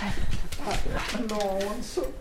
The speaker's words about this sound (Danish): Og ja, hunden Sally.